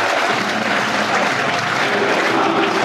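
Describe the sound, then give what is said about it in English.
A sellout stadium crowd at an FA Cup match in South Bermondsey, Millwall against Crystal Palace, roars and applauds steadily as the two teams come onto the pitch, a dense, loud wash of cheering and clapping that holds at an even level throughout with no pauses. “Two teams just coming onto the pitch, as you can tell. A sellout crowd, hot atmosphere, dear listeners.”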